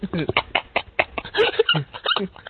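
A dog barks and yips in a rapid, uneven string of short bursts, loud, with whiny pitch slides between some of the barks.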